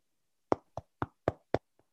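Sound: knock on the door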